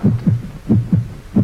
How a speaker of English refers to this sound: This is the beat of a human heart.